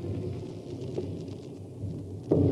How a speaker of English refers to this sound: There was thunder the night I met Catherine. Very seasonable thunder of guns up in the mountains where the Austrians were.